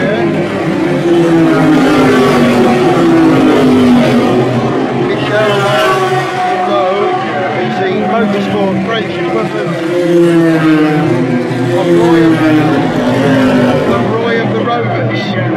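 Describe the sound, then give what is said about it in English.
Race cars, including the number 27 Dallara Gibson and the number 31 Rebellion racing under the Vaillant Rebellion banner, roar past on a track, their engines whining loudly and continuously, the pitch sweeping up and down as they go by. A voice talks over the engine noise. “Number 27 car, again, a Dallara Gibson. And I'm following the number 31, a Rebellion.”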